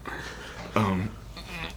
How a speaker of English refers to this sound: You're coughing a lot. And I can hear some weird sounds coming out of your throat.